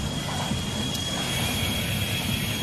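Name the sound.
train passing on rails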